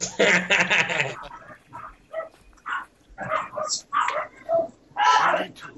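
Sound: dogs barking and whimpering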